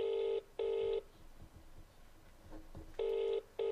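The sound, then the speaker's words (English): A phone ringback tone purrs in two quick double bursts, separated by a pause of quiet line hiss, heard clearly through the earpiece with no one speaking, as a call is placed to a woman. “Let's see if she answers the phone.”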